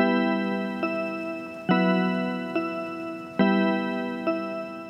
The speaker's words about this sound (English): I looked over at the clock. Midnight.